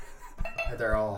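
Glassware is handled with a few light knocks and clinks, the last one ringing on in a bright, sustained tone. No one speaks over it.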